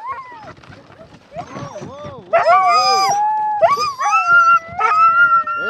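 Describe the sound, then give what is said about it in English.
A pack of sled dogs, harnessed into the traces of a komatik and jumping as far as the traces allow while waiting to run, yelps, barks and howls together in an excited, overlapping chorus, loud, growing more intense and high-pitched as it goes on. “They run out as far as the trace will let them and jump and bark until it's time to run.”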